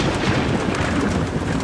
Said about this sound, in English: As Jacob and Ira work, the rain continues to fall. Harder and louder. Dad, it's really coming down out there.